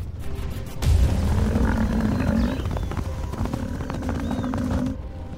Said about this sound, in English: They make their way into position to capture lions hunting buffalo like we've never seen before. Whoa, they're taking the fight to the lions. Look at that.